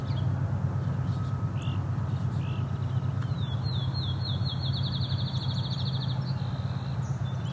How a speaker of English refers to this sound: Appears to be some fledgling song sparrows in an argument.